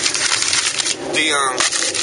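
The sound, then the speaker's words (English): Paper is crumpled in a steady burst of dry crackling and rustling, briefly joined midway by a faint high squeaky tone. “Oh, had to crumble the paper.”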